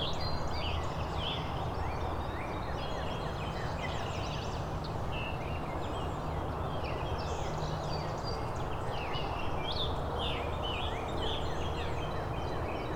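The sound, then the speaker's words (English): A northern cardinal and a scarlet tanager, the tanager directly overhead, sing amid a dense chorus of other birds including many warblers, bright overlapping whistles and phrases running continuously over a steady low rumble, with no one speaking. “It's the northern cardinal and scarlet tanager singing.”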